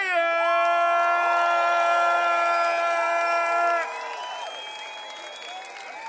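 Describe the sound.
A festival crowd cheers and applauds loudly, with scattered whoops, over a sustained musical chord that cuts off partway through while the clapping and shouting carry on.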